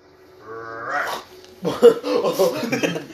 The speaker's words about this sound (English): The dog just yawns.